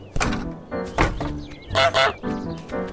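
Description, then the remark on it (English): A goose in the video game Untitled Goose Game, by the indie studio House House, honks several times in quick, uneven bursts, loud, with brief thumps and clatter between the calls. “You play as a mischievous goose, and your aim is to cause as much havoc as possible by annoying the villagers of a quiet English town.”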